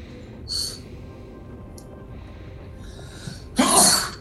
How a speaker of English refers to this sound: Bless you. Gesundheit. Salud. Dankeschön.